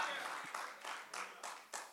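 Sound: audience applauding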